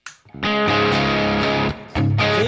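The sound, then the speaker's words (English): A loud, crunchy electric guitar plays sustained distorted chords through the bright channel of an overdriven JTM45 tube amp, ringing for over a second, cutting off, then striking again with a slide. “I'm hopping into a JTM 45 Bright Channel.”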